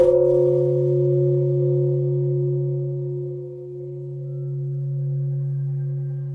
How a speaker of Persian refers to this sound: سفر به یکی از معابد شینگان برای به صدا درآوردن یکی از ناقوس‌های صلح برای رسیدن به آرامش. تجهیزات حرفه‌ای ضبط صدا رو در کنار یکی از این ناقوس‌ها برپا میکنه و شروع به ضبط صدای صلح‌آمیز ناقوس میکنه.